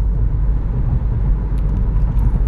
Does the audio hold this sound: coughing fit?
no